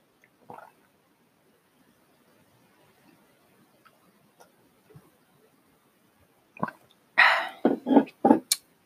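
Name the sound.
drinking water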